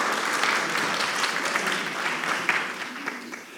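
A steady burst of audience applause for a volunteer after his underhand baseball pitch, many hands clapping in a dense, even wash of sound that holds at a fairly strong level for several seconds before tapering slightly at the end.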